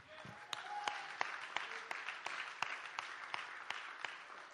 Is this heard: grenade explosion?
no